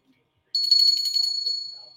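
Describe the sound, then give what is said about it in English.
A small souvenir hand bell, owned since childhood and called a sick bell, is shaken, giving a bright, high-pitched ring with a fast, fluttering series of strikes that starts abruptly, carries on for over a second, then tapers off. “So I want to tell you a funny story about this particular bell I've had since forever, since a little child.”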